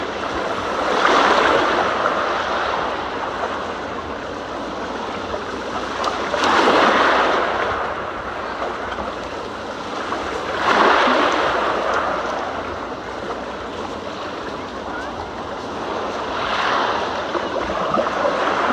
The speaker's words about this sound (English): Dear friend of ours, she wanted to hear this. She wanted to hear the lake, the waves on the lake.